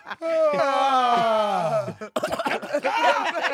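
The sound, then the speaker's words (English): A voice imitates a long, wobbly underwater yawn, a warbling groan that slides down in pitch for about two seconds, followed by a burst of quick talking. “Underwater yawns.”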